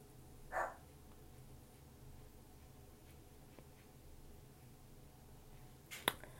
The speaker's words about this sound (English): My dog is barking. She probably wants to go out.